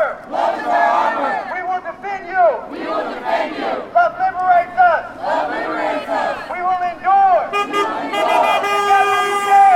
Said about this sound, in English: So even in just that small minute-long clip, you can already hear two cars passing by honking and supporting. There was tons of that throughout the march.